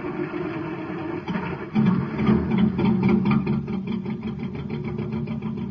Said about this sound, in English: The trouble, it's got nothing to go on but ordinary fuel. But you hear that? The driver's filling up the tank with some super fuel.